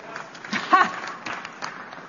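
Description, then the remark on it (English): Light, scattered applause from an audience after a speaker introduces a new team member, a brief patter of claps rising and fading over a couple of seconds amid faint crowd murmur. “You can clap. I heard one clap.”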